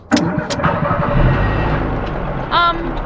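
A car engine cranks with a couple of sharp clicks, then catches and settles into a steady low rumble that swells briefly near the end. Fairly loud, with no voices.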